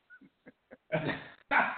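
A few soft, short yelps lead into two loud, rough barks from a dog, the second following just after the first, with no talking underneath.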